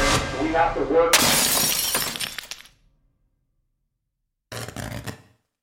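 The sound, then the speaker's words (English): A hammer smashes a television: a sudden loud crash of shattering glass with crackling, tinkling debris that fades out, then after a silence a second, shorter smashing burst. A voice sounds briefly beforehand. “I took my hammer and I stopped my TV from bringing me to life.”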